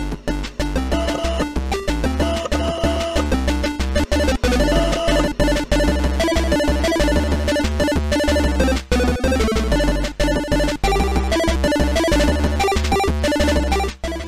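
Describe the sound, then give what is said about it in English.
A loud, busy video game theme from the game Rock and Roll Clams plays on its own, with dense layered melody lines and a steady driving beat that barely lets up for the whole stretch. “So, yeah, first thing to notice, if you've ever listened to the show and you've wondered to yourself, where does that theme music come from? It comes from Rock and Roll Clams.”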